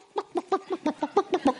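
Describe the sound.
A voice imitates a chicken clucking: about nine short, evenly spaced clucks in a quick steady rhythm, fairly loud, with no other sounds around them.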